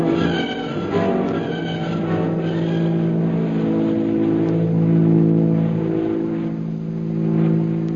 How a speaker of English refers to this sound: High overhead, a plane circles in the darkness. Sitting beside it, pilot Shanghai Lil issues orders.